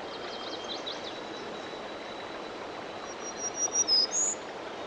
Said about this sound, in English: here's yet another warbler species. This one is a black-throated green warbler. Listen for the zee-zee-zee-zoo-zee. There. Look for him high up in the canopy above us.